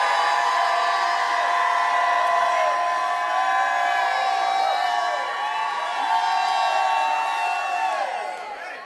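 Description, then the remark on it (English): A large audience shouts and cheers without pause, a dense roar of many voices with high whoops and yells layered on top, staying loud throughout before easing slightly at the end. “Jump up to your feet, shout like you never shouted in your life.”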